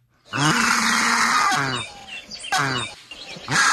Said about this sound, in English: Whoa. That sounds like a tortured goose. Dying one. Yeah. That's a turkey vulture right there. That's a turkey vulture? Let me hear that again.